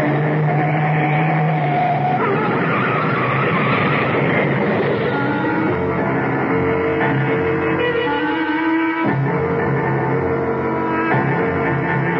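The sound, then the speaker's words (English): A car swerves off the road to avoid a truck, tires skidding and screeching, a loud, continuous roar of engine and rubber over about twelve seconds, its pitch sliding and shifting throughout. “That truck! Turn the wheel! Go off the road!”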